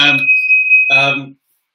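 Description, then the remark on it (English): A steady, high-pitched electronic alarm tone rings continuously for over a second, partly overlapped by bursts of speech at the start and near the end before stopping abruptly. “There's a, there's an alarm in the background.”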